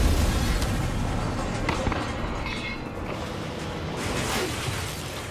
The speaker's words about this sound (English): As the sun rises on Rue Manor, we see the golf buggy blow up.